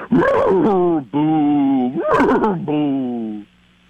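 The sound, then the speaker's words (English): A person imitates a ghostly horse whinny: two loud, drawn-out voiced cries, each opening with a quavering warble before settling into a long, eerie, steady tone. “Okay, let me try a ghost horse.”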